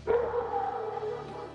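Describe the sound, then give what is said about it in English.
A dog barks once in a drawn-out, moaning call that holds for over a second, clear, with a low steady hum in the background and no talking. “Oh, heard that. Ladies and gentlemen, the Junkyard Dog making his way to the podcast.”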